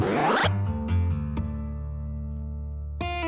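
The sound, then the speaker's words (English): A quick, rasping jeans zipper pull lasting about half a second, fairly loud, followed by a sustained, ringing musical tone and another brief burst near the end. No one speaks. “I'm going to get on my trusty jean zipper back to the 1800s to find out where jeans came from.”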